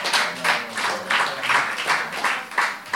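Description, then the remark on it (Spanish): A mother applauds in a steady, even rhythm, with bright, crisp claps repeating about three times a second for a few seconds at moderate loudness, with no voices over it. “Mira la madre aplaudiendo.”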